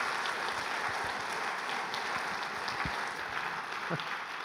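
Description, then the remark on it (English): A crowd applauds steadily to thank the band, a dense wash of many hands clapping at an even, sustained level for several seconds with no voices breaking through. “Would you guys give a big applause to thank them?”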